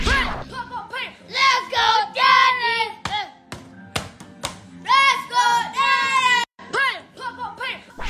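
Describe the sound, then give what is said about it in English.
The children of NFL player Cam Jordan shout and cheer in excited, high-pitched voices as they watch their father record his 100th career sack, with a few sharp claps or slaps breaking in midway before the loud cheering swells again toward the end. “And we've got some great video of Cam Jordan and his kids celebrating daddy doing his thing.”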